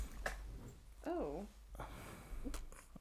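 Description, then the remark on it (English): A female dog lets out a brief, weird burp-like noise, a wavering, warbly half-second sound, with faint voices and background noise around it. “She brings a dog in and it just ruins the vibe of the show. Oh, she had like a weird burp.”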